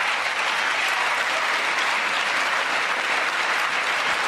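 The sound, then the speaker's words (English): An audience of Democrats applauds their man steadily throughout, a dense, even wash of many hands clapping at constant loudness with no voices rising above it. “And of course, that's the Democrats applauding their man.”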